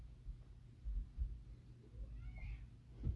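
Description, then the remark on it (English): A calico cat named Ginger gives a single soft, drawn-out meow partway through, quiet, over a low rumbling background with no talking. “As you heard from there and on, you are a kitty cat.”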